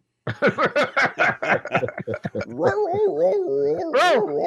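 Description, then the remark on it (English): A person imitates a dog, firing off a quick string of loud yapping barks, then sliding into a long, wavering whine. “Bark.”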